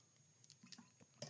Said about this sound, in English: Sorry. I swallowed some ice, or I put some ice in my mouth there, and I had to chew that and into the mic. So for all you guys listening intently in your headphones, that's going to be unpleasant for you.